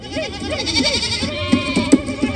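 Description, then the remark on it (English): Goats bleat in a quick run of wavering, overlapping cries, several calls close together and fairly loud, with no one talking. “So he frees the goats because there's the fellow horned things.”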